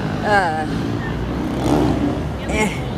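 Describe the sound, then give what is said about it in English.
Motorcycles roar past, one popping a wheelie, their engines revving in two sharp bursts over a steady rumble of traffic noise, the second rev swelling near the end. “So I went to walk by where the, well, oh my goodness, motorcycles.”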